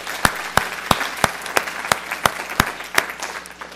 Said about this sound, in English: Hey, give him a round of applause.